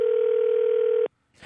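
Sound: telephone dial tone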